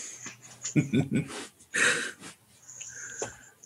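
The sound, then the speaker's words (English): A person imitates a man snoring after falling asleep mid-singing: a few throaty, nasal grunts followed by one loud, wheezy rasping breath, then quieter murmuring. “He starts to loudly sing the song again, but then you hear him start to snore as he's kind of just fallen asleep mid-singing.”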